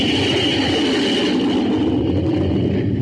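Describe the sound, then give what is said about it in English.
A Scorpion jet fighter, weighing 20 tons with a 53-foot length and a 56-foot wingspan, roars on takeoff. A loud, steady engine rumble carries a thin whine on top, continuous, its higher hiss easing slightly toward the end. “The Scorpion takes to the air like magic.”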